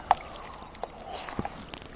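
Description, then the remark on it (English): Someone takes a swig of water on a warm day at the beach in Cordon: a few faint, wet clicks and gulping sounds spaced irregularly over a soft background hiss, with no one talking. “I'm just going to take a swig of water because it's really warm today.”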